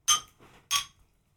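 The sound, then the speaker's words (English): Two bright clinks of Royal Jamaican alcoholic ginger beer bottles, a product of Jamaica, ring out about half a second apart, clear, knocked together in a toast, with a faint rattle between them and no talking. “So if we can cheers to this, then we can open the topic up.”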